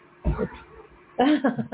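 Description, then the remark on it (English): Dogs vocalize in two short bursts, a brief yelp followed by a longer run of choppy, whiny barks and yips, moderately loud with a quiet gap between them. “There's the peanut gallery asking you to follow as well.”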